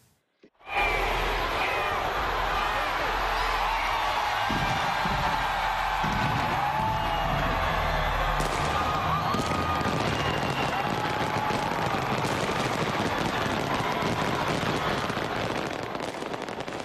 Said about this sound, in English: A big fireworks show was held in the New Zealand capital of Auckland as the clock struck midnight.